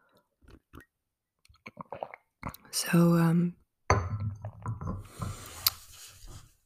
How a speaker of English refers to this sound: So, another sip is needed, I think.